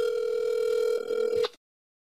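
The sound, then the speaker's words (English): A phone's ringback tone plays over a speakerphone during a call to the caller's brother, one steady electronic tone lasting about a second and a half, then cutting off abruptly into silence. No one speaks. “Okay, now what you're going to do is just put your phone on speaker and then keep the, go like this, like the way I'm showing you in the picture.”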